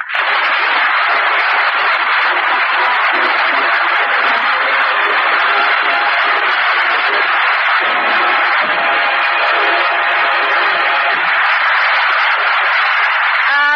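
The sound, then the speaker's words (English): A large audience applauds steadily at the opening of the show as Edgar Bergen with Charlie McCarthy is introduced on Edgar Bergen Day in Decatur, Michigan, a dense, even wash of clapping hands that stays loud without letting up, with no voices breaking through. “Bless you all for that applause.”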